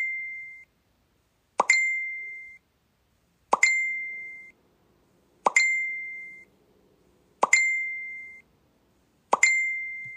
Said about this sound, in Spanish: Me están llegando notificaciones de mi hermano que vive en Alemania.